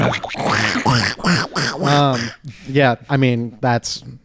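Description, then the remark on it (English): Someone imitates a duck, letting out a rapid string of about eight nasal, honking quacks, fairly loud, with short gaps between them and no other talking. “I now quack every time I go near a woman.”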